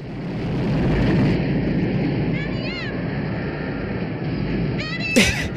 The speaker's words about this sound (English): Wow. It really sounds windy. Look at that. The airplane's kind of listing to its side. Wow, it seems like it's getting stronger. Huh. All right. So that's 92 mile an hour winds